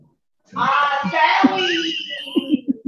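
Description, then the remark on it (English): Children yell and shriek loudly in the background in a sustained high-pitched burst lasting a couple of seconds, with a few short vocal bursts trailing off at the end. “As the kids yell in the background, I understand.”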